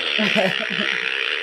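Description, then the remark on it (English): A remote control novelty fart machine lets out a low, sputtering, buzzy rasp lasting over a second, fairly loud above a steady background hiss. “And in my pantry, there's a big crate that says fart boxes because I buy a bunch of those remote control fart machines, you know, because they're great for gifts.”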